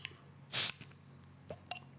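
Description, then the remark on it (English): A 2016 bottle of bourbon-barrel-aged beer cracks open with a short, loud hiss of escaping gas, followed by two faint clicks, with no talking. “I had a bottle of 2016, so that's right. Which so was this great. Is. It was great. Yeah, we'll yeah so work. I'm gonna pop this open.”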